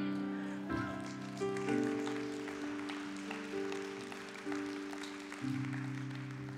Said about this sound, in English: Felt a little bit like a sympathy clap, whatever.